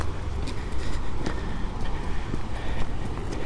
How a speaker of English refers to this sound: It's a grey and windy end to the day.